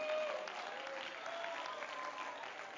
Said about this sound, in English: Come on, clap your hands and give a little praise unto the Lord.